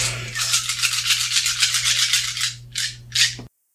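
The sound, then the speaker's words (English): A handful of nine eight-sided dice, rolled for a sleep spell cast at 3rd level, rattles and clatters steadily for about two seconds, followed by two short bursts of clicking as they settle, over a low steady hum. The roll comes up mostly 8s and 7s, totalling 55. “That's a really good roll.”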